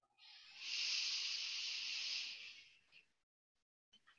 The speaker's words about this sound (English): Whether you're feeling okay or not okay, we will do our usual deep breath in. So we'll do a four count in, we'll hold, and then we'll do four count out. And I don't know about you guys, but I need this one today. So we'll start our breathing now.